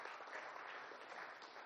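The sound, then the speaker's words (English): A crowd breaks into sustained applause, a dense, steady wash of many hands clapping at once with no single claps standing out, holding at an even level for the whole stretch. “I think that deserves a round of applause, actually.”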